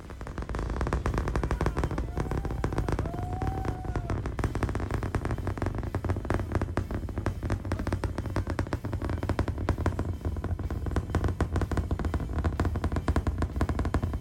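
A SpaceX rocket engine roars steadily and loudly during launch for the whole stretch, a dense, rumbling blast riddled with rapid crackling pops, with a brief faint rising whistle early on.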